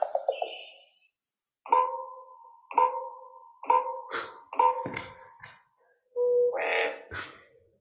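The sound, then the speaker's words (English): Common raven calls: four hollow, knocking notes with a bell-like ring, evenly spaced, then a louder, harsher croak near the end. No talking, with quiet background between calls. “So that's a common raven.”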